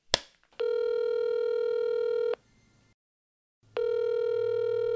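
A phone call rings through the earpiece: two long, steady electronic ring tones separated by a short silence, heard after a faint click, with no one speaking, before the call goes to voicemail.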